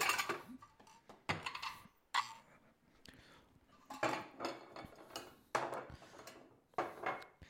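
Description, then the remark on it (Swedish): A serving dish is taken out and set down during cooking, with a series of clinks and knocks of dishware and utensils scattered across several seconds, no talking. “Vad jag tar fram asketten bara.”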